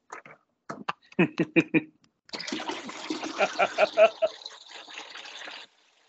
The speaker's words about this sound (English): What was that? Sound like a toilet flushing. That's what I thought.